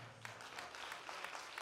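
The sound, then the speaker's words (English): A crowd claps hands together, a dense, steady patter of many overlapping claps with brighter rhythmic bursts coming through, fairly loud and continuous, with no voices on top. “Clap your hands.”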